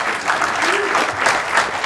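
An audience claps in a steady, dense round of applause for a presenter being introduced, a continuous crackling wash of many hands at a fairly even loudness with no voices on top.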